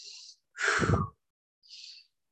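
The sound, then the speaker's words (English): Audible breathing with no talking: a brief breath in, a longer, deeper sighing breath out with a low voiced rumble, then another quick breath in, as a father breathes together with his young daughter to calm and center her. “I'll be like, come on, breathe with daddy. Like, let's breathe together.”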